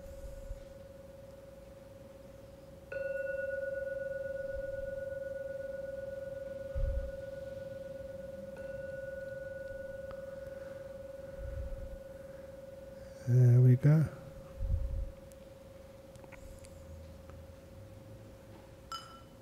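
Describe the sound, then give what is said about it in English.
A meditation gong is struck once at the close of a meditation session and rings on as a steady, pure mid-pitched hum that sustains for many seconds, with a few soft thumps and a brief rustle partway through. “I will now ring the gong.”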